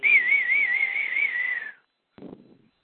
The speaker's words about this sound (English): Wow, nice whistling.